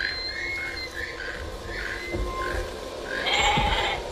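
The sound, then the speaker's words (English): A goat, tethered to a pole in foliage as bait for a Tyrannosaurus as in the film Jurassic Park, bleats several times in short, wavering cries at a steady rhythm, with a louder, higher bleat near the end against a faint outdoor background. “They put the goat in the foliage, tethered to the pole.”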